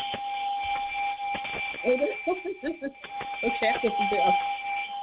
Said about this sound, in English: So you get the ringing of the bell as well. So love it.